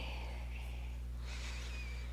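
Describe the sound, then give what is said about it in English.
A single slow, airy breath drawn in, soft and unhurried, over a low steady hum with no talking. “I'm breathing slowly.”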